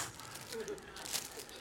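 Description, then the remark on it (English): Dull scissors struggle through crinkly plastic packaging, producing a faint, irregular burst of rustling and tearing crackles over about a second and a half. “Imagine if you do this, and I brought scissors because I already saw this happening.”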